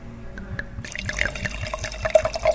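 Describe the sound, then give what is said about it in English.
Saldo wine, the second wine of a tasting, is poured into a glass, a steady gurgling stream that starts softly, then swells into a brighter splashing trickle with rising pitch as the glass fills. “Wine number two, and of course, let's hear that sound one more time.”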